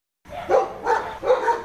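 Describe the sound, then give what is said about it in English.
Dogs bark in three quick, harmonic bursts on flooded Kimberley Road in the suburb of Epsom, where uncollected rubbish floats on the water. Each yelp rises and falls, with no talking over them. “Dogs bark as uncollected rubbish floats on top of the smelly water.”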